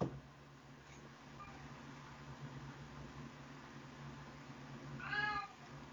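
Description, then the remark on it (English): A cat lets out a single drawn-out meow near the end, rising clearly above a steady low mechanical hum throughout. No one speaks. “Meow. The pussies are talking.”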